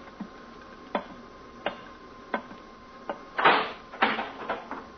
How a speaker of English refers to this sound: Earthman, you will rise from your seat and open that door.